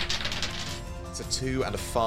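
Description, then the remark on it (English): A quick rattle of small hard objects tumbling and clicking across a tabletop as dice are rolled, with a plus three, for Togekiss's move in a Pokémon battle during a tabletop game. A voice starts talking over the end of the clatter. “Come on, dice.”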